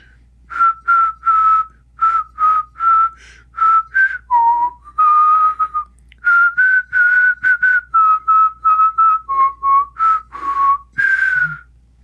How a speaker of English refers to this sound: A funny analogy of that reminds me of sometimes around the farm, I like to whistle when I'm out working on the farm. And sometimes I whistle like this.